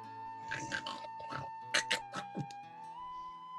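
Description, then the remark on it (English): A voice mimics a creature with a string of short, low growls and grunts, some with breathy, raspy bursts, over a steady faint hum. “This makes a lot of like small growling noises.”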